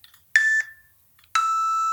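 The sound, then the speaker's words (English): Two clear electronic timer beeps, a short tone followed after a brief pause by a longer sustained one, loud with no talking. “There's the beeps.”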